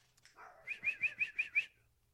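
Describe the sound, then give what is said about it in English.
A quick run of about six high-pitched, even yaps from a dog barking at a back gate, fairly loud, with no talking around it. “Now she's barking at our back gate.”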